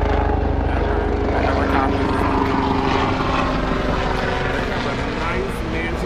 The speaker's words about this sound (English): We don't wait for that helicopter to pass.